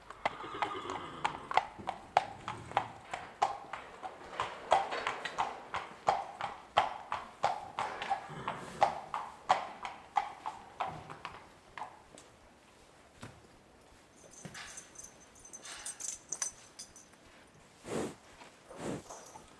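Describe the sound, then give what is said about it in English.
Steady, rhythmic clip-clop of a mare's hooves on a hard surface as she walks down a path, easing off partway through before a few scattered hoof strikes and faint rustling near the end. “"That effing horse," he says. "There'll never be another like her."”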